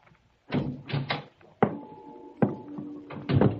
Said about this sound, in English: I edged closer and then... I banged against the steel drum and the noise it made shattered the silence.